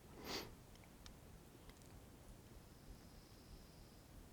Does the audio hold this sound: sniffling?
yes